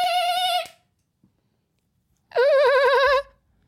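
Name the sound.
person imitating dolphin sounds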